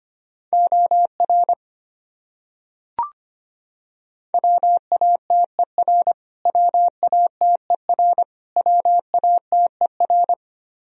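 Morse code sent at a brisk 25 words per minute, spelling common English words: a single steady mid-pitched tone keyed into quick dots and dashes, grouped into words with short gaps, plus one brief click early on.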